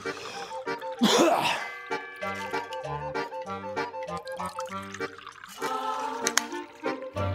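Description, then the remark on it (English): Water is poured briefly and drunk during a water break, followed by a throat clearing and small drinking sounds, with steady background music playing throughout. “How about I did that water break with …?”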